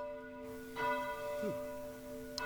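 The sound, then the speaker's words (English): A church bell rings like an alarm with a rich, sustained hum, struck again partway through so its tones swell and linger, with no voices present. “You start to hear like a church bell ding.”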